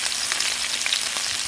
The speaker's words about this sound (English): How's that for a wonderful sound? I love the sound of sizzling. So we're doing some peppers and onions here and some wonderful olive oil.